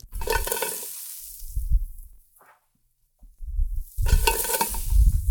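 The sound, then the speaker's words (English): Ginger and onion are added to star anise, cloves, coriander seeds and cinnamon toasting in a pan over medium heat, sizzling loudly in a bright crackling hiss with low stirring thumps underneath, fading into a brief quiet pause before the frying surges back up again. “I'm now going to add some ginger and some onion.”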